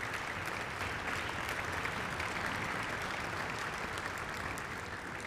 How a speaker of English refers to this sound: You all deserve a big round of applause. So please, thank you to all of our students and parents.